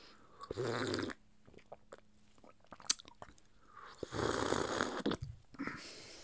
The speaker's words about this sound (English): I'm going to take a little sip of my coffee. I just poured it all over my pants.